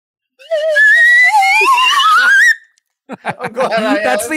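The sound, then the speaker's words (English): A loud whistle, blown as a comedic sound effect, sounds for about two seconds, its wavering pitch sliding steadily upward. After a brief pause, voices follow with what sounds like chuckling and talk. “That's the sanity whistle.”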